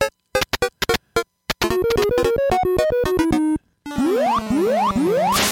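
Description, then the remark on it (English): Donkey Kong 3 arcade game sounds of the player spraying and Donkey Kong smacking the hives: a run of short bleeping chiptune notes, then a steady buzzing tone stepping through pitches, followed by repeated rising electronic sweeps. Loud and busy, with no voices. “Check this out. Some DK3 sound.”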